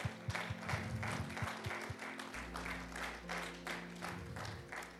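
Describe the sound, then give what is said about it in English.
An audience at Freedom Ministries applauds together to honor pastors, a dense, steady wash of many hands clapping for about five seconds, with a low rumbling hum from the sound system running underneath. “Let's give them a clap offering.”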